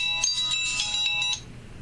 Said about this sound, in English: Well, this is awkward. Phone call. One moment, please.